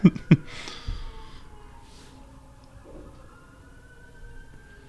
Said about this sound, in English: Okay. Pause for sirens. What kind of neighborhood are we in here?